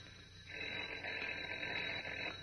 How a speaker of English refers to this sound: But as we continue now, Kent's phone is ringing again. Listen.